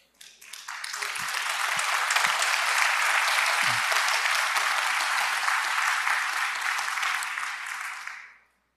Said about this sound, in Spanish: Y ese es el momento donde tú tienes que, mira, aplaudir y decir, eso es mentira del enemigo, yo no recibo eso, yo no lo creo